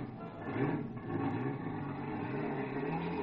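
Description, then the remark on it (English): A car engine rumbles loudly and steadily as a man starts his car, its low drone rising slightly as if accelerating, with no voices over it. “Some poor guy was just starting his car. I grabbed him by the neck and threw him out. And I took the wheel.”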